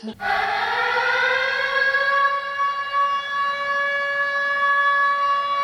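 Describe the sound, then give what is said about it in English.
A loud alarm siren wails steadily, its stacked harmonic tones rising in pitch at the start and then holding a sustained, piercing drone for several seconds with no voices. “Ring the alarm, we've got a couple new patrons to shout out this episode.”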